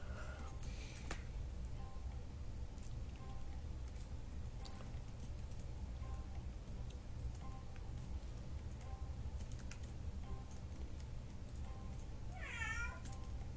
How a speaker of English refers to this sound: Okay, so if you heard that meowing noise, just whatever. Don't care.